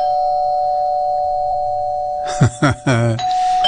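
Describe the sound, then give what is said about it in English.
A sampled doorbell sound, used as the teaser for a listening game, rings with a steady, sustained electronic tone, then breaks into three or four sharp, harsh bursts near the end. No one speaks. “Oh, somebody get that door, please.”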